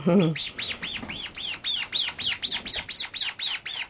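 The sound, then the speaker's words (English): A seabird chick on Mana Island calls insistently while being handled during processing, a steady run of about fourteen loud, high, arching squawks over four seconds, with a brief low voice at the very start. “More seabirds for Mana Island”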